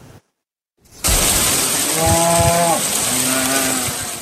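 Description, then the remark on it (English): Dozens of cattle in Oklahoma moo twice in a row, each call long and low, over a steady loud rush of roaring floodwater after heavy rain, with no one speaking. A brief silence comes before the noise starts. “Dozens of cows, Oklahoma even, I do apologize, dozens of cows were overtaken by floodwater”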